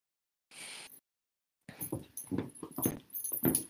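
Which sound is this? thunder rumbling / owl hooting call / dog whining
dog whining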